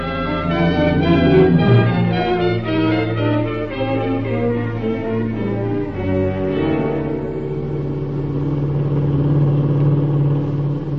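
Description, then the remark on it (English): A car engine hums loudly and steadily, its pitch shifting as it gathers speed before settling into an even cruising drone. No one speaks. “Black Plymouth Sedan, 1941, Pennsylvania license number.”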